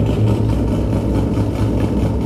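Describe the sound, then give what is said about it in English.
A yellow car's engine idles, a steady low rumble with a faint rhythmic throb that holds at an even, fairly loud level throughout, with no voices. “He thinks he's so fucking cool in his fucking nice yellow car.”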